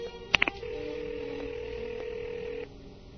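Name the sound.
telephone dialing and ringing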